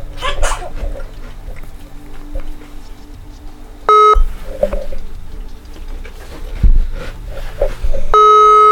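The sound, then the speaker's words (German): A phone ringback tone of an unanswered call plays over a loudspeaker, two steady electronic tone bursts about four seconds apart, loud against a murmuring background with faint bird cooing. “Wo ist der Lautsprecher? Die geht nicht ran.”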